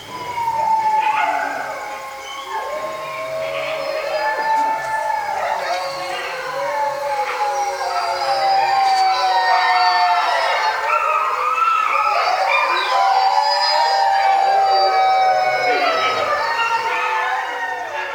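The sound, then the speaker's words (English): A pack of timber wolves, a subspecies of the gray wolf, howls together in a dense, continuous chorus, many long wavering voices rising and falling over one another, loud and sustained for the whole stretch. “These wolves were recorded by Brian Wright for the International Wolf Center CD, ….”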